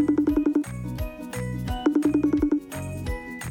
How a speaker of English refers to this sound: Well, that was the strangest ringing sound I've ever heard in my life. If y'all don't know, what we do to signal we're going to start is I do a ringtone, and I just made up my own new ringtone this time.